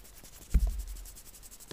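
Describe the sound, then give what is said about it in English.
Pen scratching across paper in short strokes, with a soft thump near the start and a faint papery rustle throughout; fairly quiet, no voices. “That's me writing down on a piece of paper.”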